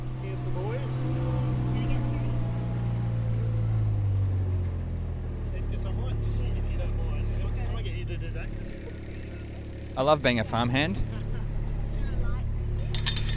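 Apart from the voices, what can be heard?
vehicle engine running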